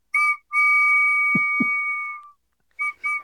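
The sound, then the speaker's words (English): A 3D-printed dual-tone whistle, printed on a Mac Pro 6.1, sounds two steady, shrill pitches at once, train-like: a short blast, one long sustained blast, then two quick toots. Two soft low thumps occur during the long blast. “Anyway, here's the dual tone that he sent me.”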